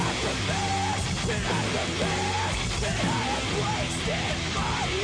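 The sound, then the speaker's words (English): Loud, dense rock music with a male singer's strained, screamed vocal riding over heavy distorted guitars and pounding drums, sustained at full intensity throughout. “His screaming is definitely pretty unique to this style. He has a very memorable sounding voice too. It's very pained sounding.”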